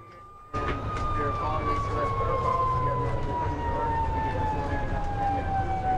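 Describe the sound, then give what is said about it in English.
A siren wails continuously with a slowly falling pitch over loud, rumbling road and engine noise from a moving ambulance, kicking in abruptly after a brief quieter moment. “It's pretty clear that CPR in a moving ambulance is a complete and utter waste of time.”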